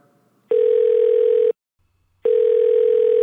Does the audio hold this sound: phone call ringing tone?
yes